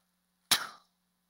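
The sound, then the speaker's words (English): A single rock drops onto hard ground with one sharp thud that fades within a fraction of a second, surrounded by silence and no voices. “Thud. They hit the ground.”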